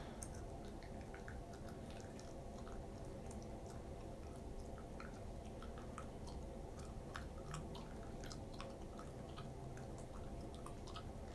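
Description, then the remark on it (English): Wet chewing of gum with scattered moist clicks and smacks, steady over a soft, constant background hiss with no talking. “Sorry, y'all. I'm chewing this gum.”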